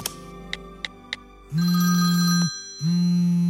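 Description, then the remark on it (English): A few quick keypad beeps, then a phone ringing on an outgoing call: a steady buzzing ring tone that pauses briefly and starts again. No one speaks. “I should call Zara.”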